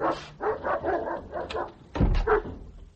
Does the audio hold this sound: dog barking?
yes